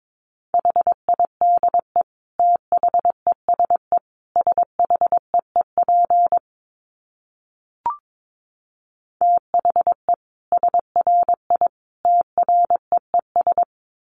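Morse code sent at 22 words per minute: a steady mid-pitched beep keyed into quick dots and dashes, in two runs separated by a pause broken only by a faint click.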